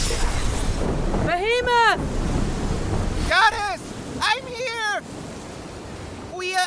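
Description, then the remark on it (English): A loud, continuous roar of storm-tossed ocean waves crashing and churning around a man's boat in the audio drama Goddess, with several short bursts of raised, shouting voices calling for help cutting over the din. “My boat is tossed and torn by waves!”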